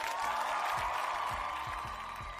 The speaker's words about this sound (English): Put a little round of applause in here for Aaron answering this question off the fly